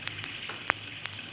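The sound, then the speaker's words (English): A steady patter of rain falling, with scattered drops tapping sharply on a surface over a soft, continuous hiss. No one speaks. “We don't stand out in the rain for fun, mister.”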